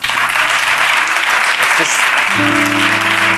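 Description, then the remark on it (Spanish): Loud, dense applause from an audience asked to clap if they cry more than once a month fills the whole stretch, a steady wash of many hands clapping, with a faint tonal hum joining in toward the end. “Aplaudir si lloráis más de una vez al mes.”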